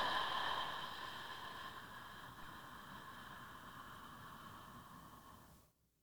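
A long, slow exhale during a slow deep-breathing exercise: a soft, steady rush of breath lasting several seconds, gradually easing off before cutting to silence, heard alone with no talking.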